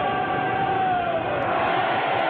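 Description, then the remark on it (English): A steady, dense crowd roar of LSU Tiger baseball fans cheering in a ballpark, loud and continuous for the whole stretch with no clear individual voices or words. “The LSU Tiger fans start to make some noise here in the ballpark.”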